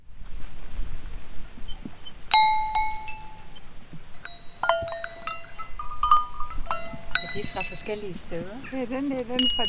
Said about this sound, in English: Bells from all over the world hang from the staircase railings to her house. Krobjellen der, den er fra Schweiz, den er fra en genbrugsforretning, og sådan der er lidt af hvert her.